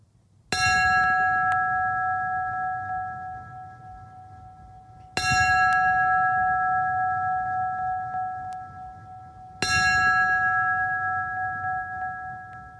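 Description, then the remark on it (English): A fire bell is struck three times at slow, even intervals as the last alarm at a ceremony for firefighters, each loud clang ringing out with a bright metallic tone that fades gradually before the next strike. No one speaks. “We will once again sound their last alarm.”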